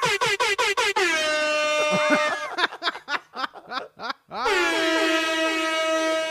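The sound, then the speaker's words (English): A rapid burst of short air horn blasts, then a long sustained blare that rings out with echoing repeats from an added echo effect, followed by chopped stuttering honks and another long held horn blast, loud. “Got the echo effect”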